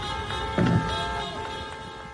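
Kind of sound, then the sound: vehicle, car caravan honking horns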